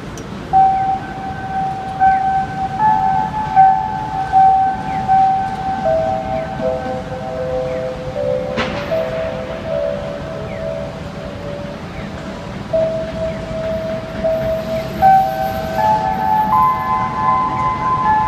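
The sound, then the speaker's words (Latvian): A pleasant, melodic end-of-workday signal horn, sounding daily at five in the afternoon, holds long steady tones that step between a few pitches over a constant rushing background noise. “Un atradu tiešām to aprakstīt, jā, avotos internetā, ka tas ir darba dienu beigu signāls, bet viņš ir ļoti patīkams.”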